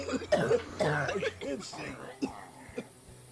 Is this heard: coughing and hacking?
yes